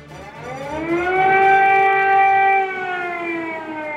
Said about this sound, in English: Air raid sirens becoming a familiar sound in Kyiv